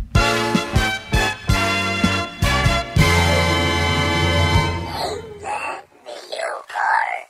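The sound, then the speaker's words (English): A short jingle for the 'Name that video part' segment: punchy, rhythmic stabs of bright harmonic tone ride over a steady low note, then give way to loud, drawn-out voice-like wails at the end. “God, love that little jingle.”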